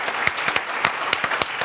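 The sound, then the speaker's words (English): An audience at a church service claps steadily after a pledge total for For the Love is announced, a dense wash of overlapping hand claps with sharper individual claps popping out irregularly, at a moderate, sustained level with no voices. “Your clapping is sweet, but that's not enough.”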